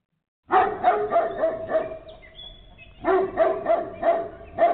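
A dog barks in quick, steady bursts, about five loud barks, then a brief quieter pause before another rapid run of barks resumes. No one speaks.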